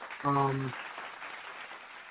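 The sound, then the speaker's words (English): An applause sound effect played on a call-in show: a steady wash of crowd applause, a dense hiss of many hands clapping at once, with a brief voiced sound near the start riding over it. “I'm going to go ahead and put some claps on it.”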